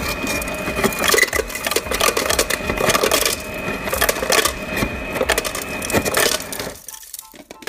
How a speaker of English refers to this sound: It depends how much cold brew you have, but you want to fill that joker with ice. Probably halfway through. So you're about to hear ice. So sorry about that.